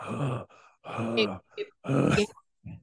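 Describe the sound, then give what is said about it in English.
A voice imitates heavy, raspy mouth breathing: three loud breaths with groaning undertones and short pauses between them, followed by a faint trailing exhale. “Mouth breathing, pan out to the fact that there is still very much someone in the house”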